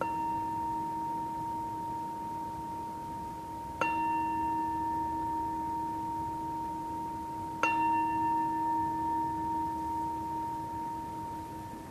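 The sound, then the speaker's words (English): A meditation bell at the end of a group meditation sitting rings on its own, already humming at the start, then is struck twice more about four seconds apart, each strike blooming into a long, steady, pure ringing tone that slowly lingers. “You can keep the attention with that until all the ringing is gone, until you can't hear any more bell sound at all.”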